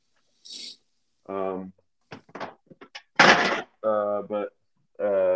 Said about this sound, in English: What are you slamming? Oh, I was throwing cans up.